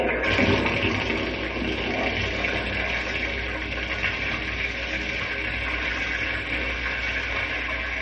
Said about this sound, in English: Now I'll turn on the water so it can run through the pipes over the model. Watch the topsoil wash away.